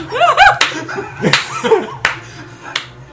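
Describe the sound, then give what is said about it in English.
Four slow, evenly spaced sarcastic hand claps ring out, each sharp and distinct, with someone's chuckling vocal sounds mixed in between them. “the sound of distinctively sarcastic clapping.”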